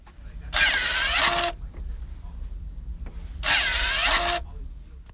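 An automatic hand sanitizer dispenser whirs twice, each bright, buzzy motor burst lasting about a second with a pause between, over a faint low background hum and no talking.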